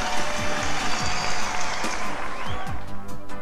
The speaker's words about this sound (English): The crowd's going wild. We can barely hear ourselves talk.